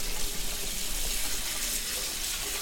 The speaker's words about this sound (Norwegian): Nå har jeg kokt en blomkål. Og så skal jeg sile av vannet på den. Så skyller jeg den I kaldt vann for å stoppe kokeprosessen, sånn at ikke den blir alt for bløt.